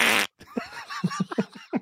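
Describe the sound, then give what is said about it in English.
A loud, raspy fart blasts out, stops abruptly, then a string of shorter sputtering, squeaky bursts follows over the next second and a half. “Have you not saved any of my fart videos to bring up at any point during this?”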